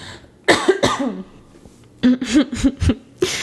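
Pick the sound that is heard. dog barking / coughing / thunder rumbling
coughing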